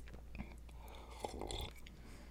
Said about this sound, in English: Let me have a sip of my coffee.